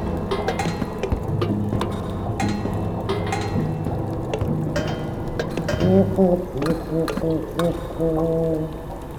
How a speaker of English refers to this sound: The alarm call of an acrocephalus warbler.